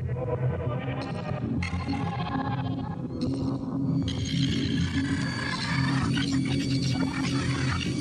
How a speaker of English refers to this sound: So you're getting kind of that weird, screechy, kind of banshee thing in from two different places, when one has reverb and one doesn't. So that kind of, to me, adds a cool level of like almost confusion and delirium to this.